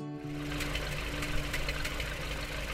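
A car engine idles steadily, a continuous low rumble with a faint rhythmic chugging pulse running through it. It sounds fairly loud, with no voices.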